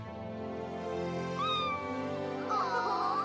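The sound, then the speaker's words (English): A cat, Bubble Kitty, meows twice, a short rising call followed by a longer, wavering one, fairly loud over a steady tonal hum in the background. “I think Bubble Kitty wants to thank your puppy.”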